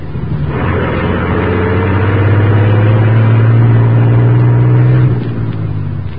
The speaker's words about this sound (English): As the huge truck rumbled out from the alley, the squad car carrying Moran with Lawry and Axford approached from the main street.